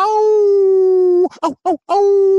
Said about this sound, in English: Oh, the howl of the coyote.